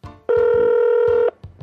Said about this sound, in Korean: 지금 저희가 녹음하는 시간이 낮이어서 네. 이분 전화 연결이 가능할지는 모르겠습니다만 네, 네. 일단 한번 전화를 드려보죠.